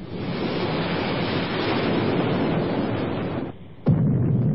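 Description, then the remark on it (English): A massive explosion as an island is blown up roars as a thick, sustained rumble of noise with no voices. It dips for a moment near the end, then a fresh sudden blast bursts back in. “We must get off this island before she blows it up!”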